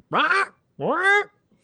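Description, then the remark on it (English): A person squawks twice in a harsh, nasal voice, imitating a parrot, each loud call rising in pitch and lasting under half a second with a brief pause between. “can we get a rot parrot sound of April 2020?”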